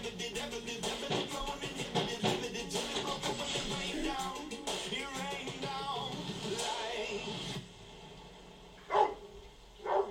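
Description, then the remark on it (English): A dog barks repeatedly and loudly for several seconds amid a busy, noisy scene, then things quiet down before two more sharp barks near the end. “Easy hot dog. Hot dog! Dog!”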